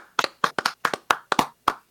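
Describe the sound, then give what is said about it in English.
A quick run of about a dozen sharp hand claps at the end of a show, fairly loud, in uneven bursts and pairs, with no talking. “Let's clap it out, everybody.”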